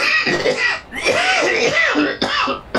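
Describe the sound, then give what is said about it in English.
A person coughs and clears their throat several times in close succession, loud, with rough, raspy bursts and no speech. “I'm coughing like Greg Cody.”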